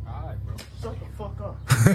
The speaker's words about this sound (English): Oh, and then he just slapped him.